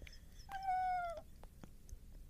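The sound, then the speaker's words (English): A person does a single drawn-out cat meow imitation, a clear tonal cry that holds steady then dips slightly, fairly loud, followed by a few soft clicks and quiet background noise. “Wait, let me try my cat. Nobody asked for a cat impression.”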